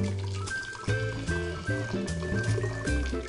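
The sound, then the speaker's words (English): A thick, wet pour of cooked kabocha squash, still quite hot after 30 to 40 minutes of cooking, sloshing into a blender to be pureed, with splashy, gurgling bursts over a steady tonal background of sustained musical notes. “So I'm just gonna transfer all of this right to the blender.”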